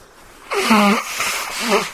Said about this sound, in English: Do you mind if I blow my nose? No, go on, go ahead. All right, hang on.